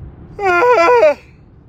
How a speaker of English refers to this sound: Although the yawning seemed to have stopped, I guess that's good. It must have been all that deep breathing that I was doing.